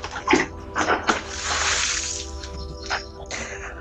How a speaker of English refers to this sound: Wait, let me throw this water away first.